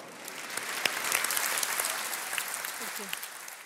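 A room full of people claps warmly and steadily, a dense patter of many hands with a few sharper claps standing out, holding at a moderate level for several seconds.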